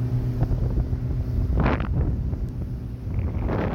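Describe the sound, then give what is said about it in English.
A steady boat ride in Grand Teton National Park, Wyoming: a low engine drone and rushing water under constant wind buffeting the microphone, with a few brief louder gusts and splashes. No one speaks. “And the other one is from my hometown in Wyoming, where I'm riding on a boat in the Grand Teton National Park.”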